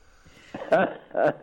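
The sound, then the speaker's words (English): Two chesty wheezing breaths in quick succession when laughing, each a short raspy gasp with a faint whistling tone, the second slightly quieter than the first, with no talking. “You get these funny noises. I'm still very chesty.”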